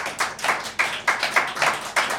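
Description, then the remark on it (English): An audience claps to vote that a drawing maybe looks like the image on the screen, sharp bright claps overlapping into a moderate wash of applause with regular peaks, no voices. “Clap now if you think maybe it kind of looks like it.”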